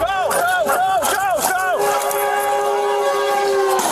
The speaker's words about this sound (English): lands his small plane right in the middle of active train tracks in Los Angeles. Can LAPD rescue him before the train barrels through? I just knew I needed to grab him and get him out. I didn't even bother to look how close the train was.